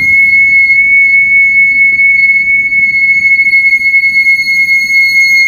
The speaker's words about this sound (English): That's my brakes every day. 500 times a day, it is driving me fucking mad. So it went from that little squeak to this.